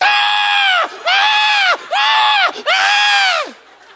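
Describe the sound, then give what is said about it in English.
A voice imitates a newborn baby screaming: four loud, strained wails in quick succession, each rising and falling, with no other sounds. “And then it's funny, us goofy newborn parents look at a newborn that's screaming at the top of his lungs, smiling, talking about, hey, welcome to the world.”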